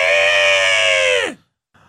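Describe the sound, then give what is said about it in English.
A person imitates wrestler Nia Jax's scream, holding a strained, buzzy shriek for over a second before it sharply drops in pitch and cuts off, followed by a brief faint sound. “Remember when she screams? She goes.”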